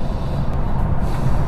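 Steady low rumble of road and engine noise inside the cabin of a V8 Lexus cruising at speed on the M4 motorway, a constant dense drone with no speech.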